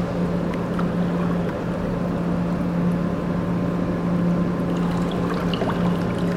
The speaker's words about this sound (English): I spend a lot of time here at the edge of the forest, behind the factory. You can hear the generator in the distance.